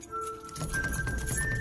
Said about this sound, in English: Can't you hear that? The keys? He's coming.